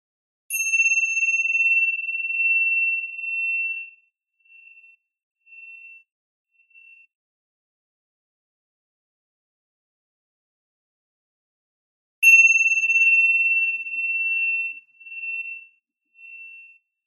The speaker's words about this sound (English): To do the chime, you guys will hear ding, and then we'll just let that sit for a minute and we'll bring it back with another chime. Here we go.